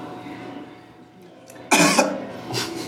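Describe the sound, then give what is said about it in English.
A single sharp cough bursts out, followed by a softer, breathy trailing sound a moment later. No one speaks. “That's I'm bored of this conversation, cough. The singular cough.”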